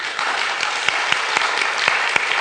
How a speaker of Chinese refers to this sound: 你介不介意给个掌声他们？